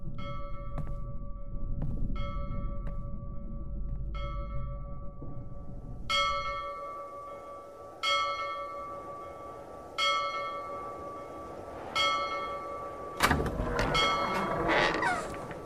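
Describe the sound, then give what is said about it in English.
A ship's bell at the bow of a ship rings at steady intervals of about two seconds, soft at first over a low rumble, then struck louder and ringing out clearly with lingering metallic tones. “Where is the bell? Across the way, at the bow of the ship.”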